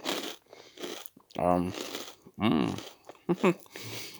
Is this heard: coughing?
no